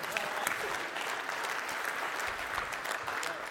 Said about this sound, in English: This is an important moment. One person claps, we all have to. Come on.